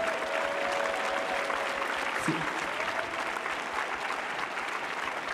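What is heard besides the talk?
audience applause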